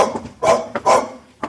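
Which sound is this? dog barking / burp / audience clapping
dog barking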